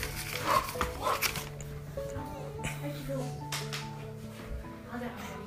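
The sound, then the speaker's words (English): A dog named Lucky lets out a few sharp barks and yips in the first second or so, then quiets while a steady background hum and faint voices continue. “Yeah, but this is my dog.”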